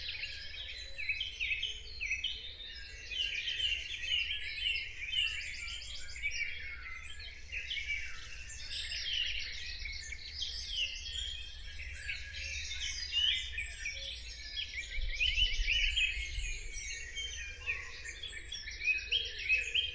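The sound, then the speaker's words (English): A dense dawn chorus of blackbirds and song thrushes in a churchyard around 4 a.m. in early May, many overlapping songbirds with rich whistled phrases and repeated notes pouring out continuously over a low, steady background rumble. “The dawn chorus really is made up of blackbird and song thrush in most places, especially where there's trees.”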